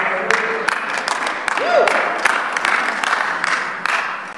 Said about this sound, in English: I hope you're still clapping in a few minutes.